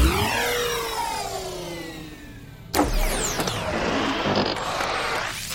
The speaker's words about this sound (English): So once you're all seated and secured in the shuttle, Rocky flips a few switches, activates the engines, and navigates out of the shuttle bay.